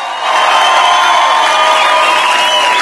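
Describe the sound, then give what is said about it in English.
A crowd breaks into loud, sustained cheering and applause, a dense wash of clapping mixed with whoops and shouts that holds steady for a few seconds. “An applause for a great September.”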